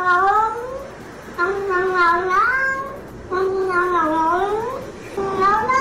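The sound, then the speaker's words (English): A cat meows four times in a row as its owner comes home, each call long, drawn-out and wavering in pitch, loud with short pauses between, over a faint background hum; the owner taped it. “He's come home. His cat's meowing. He's taped it.”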